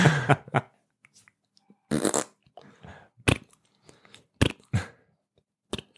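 A string of short, sputtering fart noises, about seven or eight bursts at uneven intervals, some broad and blaring, others brief and squeaky, with near-silent gaps between them.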